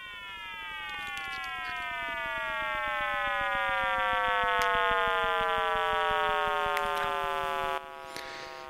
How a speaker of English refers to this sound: Thanks to Professor Emeritus John G. Kramer of the University of Washington in Seattle, How on Earth is able to bring you the sound of the Big Bang, Professor Kramer's newest high-fidelity 2013 version.